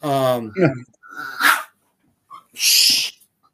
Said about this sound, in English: Dog and the cat are fighting.